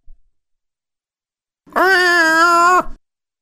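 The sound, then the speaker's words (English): A single drawn-out cat meow lasting about a second, holding a steady, fairly high pitch before dropping off at the end, heard alone against silence. “Can I get a kitty cat there?”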